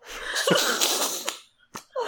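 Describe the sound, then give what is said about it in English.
A single loud sneeze erupts in a long, spraying burst, followed by a brief quiet and a couple of short sniffs or breaths. “Bless you.”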